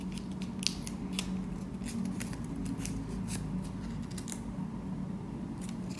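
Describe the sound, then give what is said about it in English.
Scissors snip through AirTag product packaging as it is opened, a string of short, crisp cuts at an irregular pace over a steady low hum. The snips are fairly quiet, and no one speaks. “And all right, let's crack this thing open.”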